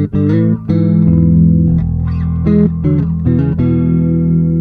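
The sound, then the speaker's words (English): An electric bass plays a short melodic phrase of sustained notes through a very old Boss CE-2B bass chorus pedal, giving a shimmering, swirling chorus effect, loud with no voices. “There is a very old Boss bass chorus really, CE2B.”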